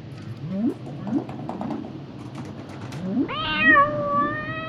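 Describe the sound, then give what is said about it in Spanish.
A cat meows repeatedly: several short, rising mews followed by a longer, louder, drawn-out meow near the end, over a faint background murmur. “Me resulta muy familiar el sabor, Panchito. Gatito, acompáñeme.”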